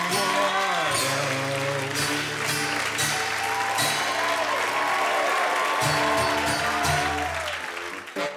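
A stand-up comedy audience applauds steadily for several seconds, a dense wash of clapping that holds level, mixed with music underneath, before trailing off at the end.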